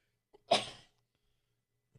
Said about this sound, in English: Sneeze.